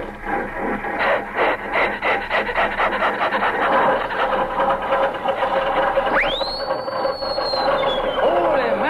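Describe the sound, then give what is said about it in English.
An old Stutz Bearcat car engine cranks and sputters to life with a rapid rasping chug, then a loud squealing whistle sweeps sharply upward and slowly slides back down over the steady rumble. “I want to hear that Stutz Bearcat engine, boy.”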